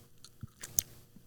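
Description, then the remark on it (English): A crisp crunch as someone bites into a corn dog, two quick crackling snaps followed by faint soft chewing, with no talking. “No, when you bite into it, it's crunchy at first, right?”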